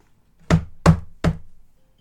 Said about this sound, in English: I assume because it's a lock-in, we're going to have to knock. Okay. Do a knock at the door.